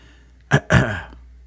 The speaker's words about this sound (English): Just clearing my throat for it, because this is really the crux of the matter, and I can't get past it.